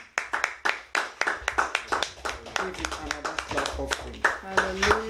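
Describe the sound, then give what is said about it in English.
A group claps for the Lord in a steady, brisk rhythm, loud sharp slaps repeating throughout, while voices call out and shout over the clapping in the second half. “Give the Lord another clap.”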